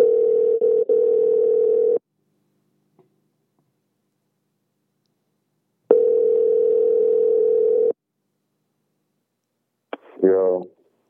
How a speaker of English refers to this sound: Sorry about that. The phone died.